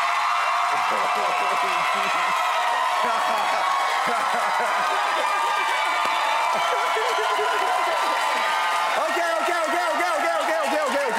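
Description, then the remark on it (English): A TV studio audience erupts in loud, sustained cheering and applause to vote for the winning team, with dense clapping and whoops and shouts rising over it, holding steady for several seconds. “If you think Drew and Ben won, please make some noise!”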